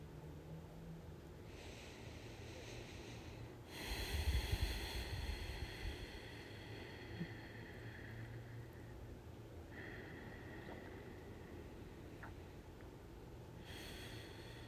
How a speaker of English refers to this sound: And starting to breathe in and out slowly. Starting with something called a connected breath, meaning there's no space between the top of an inhale or the bottom.